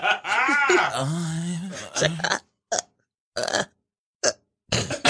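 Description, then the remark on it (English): A long, drawn-out belch with a wavering pitch, then four short, sharp burps separated by brief silences. All fairly loud, with no talking. “All I heard was burps.”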